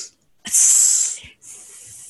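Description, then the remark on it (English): A voice imitates Parseltongue, speaking to a snake, with two hisses: a long, loud, bright hiss lasting most of a second, a brief pause, then a softer, steadier second hiss. No words are spoken. “Excuse me, but it's like hiss, hiss.”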